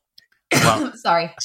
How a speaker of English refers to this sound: I'll talk while you're coughing